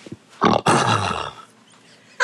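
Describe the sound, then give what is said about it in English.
A person imitates a lion's roar with one loud, rough, drawn-out growl lasting about a second, preceded by a short breathy burst and followed by quiet. “Doesn't that sound like a lion?”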